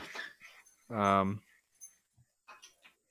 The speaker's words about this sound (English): I don't know if you heard my dog.